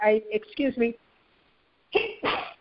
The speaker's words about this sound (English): I sneezed. Bless you.